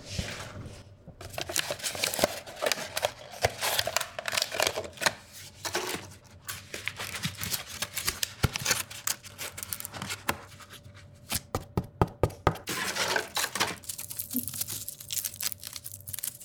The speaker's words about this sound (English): Do you want to hear other paper sounds? I would love to hear more sounds, yeah.